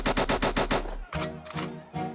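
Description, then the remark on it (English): A rapid burst of automatic gunfire rattles off for about a second, followed by three slower, spaced shots, all loud and close over a deep bass-heavy musical backing. “What we fire? Hot tool! Hot tool! And how it sound!”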